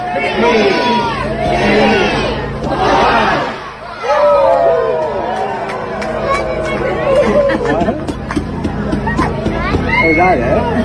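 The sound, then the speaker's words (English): A large outdoor crowd at the Christmas tree lighting in Orillia, Ontario, reacts with loud swelling shouts for the first few seconds as the switch is flicked, seemingly disappointed, then settles into a dense, steady hubbub of overlapping chatter and scattered calls. “Now, we'll describe the tree after you hear the reaction of the crowd.”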